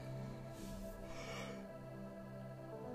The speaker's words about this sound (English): I'm trying not to yawn. I'm so sorry, you guys. I've been up since 6:30.